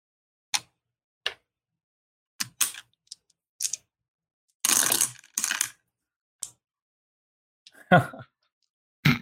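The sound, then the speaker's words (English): A scattering of sharp clicks and taps, then a dense rattling clatter of five dice tumbling across a table, followed by a few more scattered knocks. Moderately loud, with faint voices at moments. “It's five dice. Five dice.”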